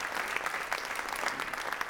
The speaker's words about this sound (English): Last weekend at Easter, some 2,000 people came through this building celebrating the resurrection, and I think that is fantastic. Yes, you may clap, because that's what we're clapping for.